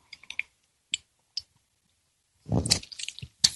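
A few small clicks and clinks, then a short slurping sip of tea with wet, gurgly texture, ending in one last soft tap. No one speaks.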